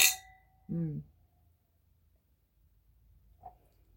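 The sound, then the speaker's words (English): Wine glasses of rosé clink together once in a toast, a sharp bright chime that rings briefly and fades, followed by a short murmur from a voice and then near silence. “Ready to drink it. It smells so good. Cheers.”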